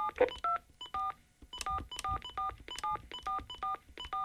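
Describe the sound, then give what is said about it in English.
A quick string of touch-tone keypad beeps, roughly a dozen short dual-tone presses in a steady rhythm, as a phone number is dialed for a call through the Goog 411 service. Clear, with no talking. “For Goog 411, please enter the phone number you would like to dial, followed by the pound key.”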